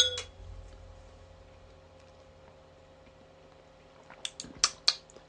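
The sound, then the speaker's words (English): Glasses clink together in a toast: a quick cluster of three or four bright, ringing taps near the end, after a stretch of quiet room hum. “So let's jingle Santa's let's balls. Let's jingle.”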